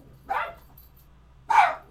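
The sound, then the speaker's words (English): Two sharp barks from Stitch, a dog, about a second apart, clear, each a short bright burst with quiet background noise in between. “We had an increase in Stitch barking, apparently.”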